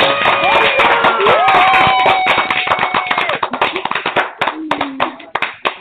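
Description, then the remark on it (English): A studio audience applauds warmly to welcome a guest, dense rapid clapping that swells at first and then thins into scattered individual claps as it dies away, with a faint voice and some whooping tones underneath. “Let's give her a clap.”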